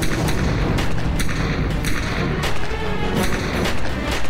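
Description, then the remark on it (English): A rapid burst of gunshots inside a house, 21 shots fired in a matter of seconds, sharp cracks in quick irregular succession over a steady loud rumble, with no voices. “Then they started shooting.”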